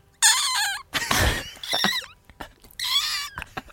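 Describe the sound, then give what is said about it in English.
A man imitates a seagull with several shrill, wavering squawks and cries, loud, separated by short pauses, with one raspier, breathy burst in the middle. “but my favorite one out of all of the impressions that he's so good at, I think my favorite is when he does a seagull.”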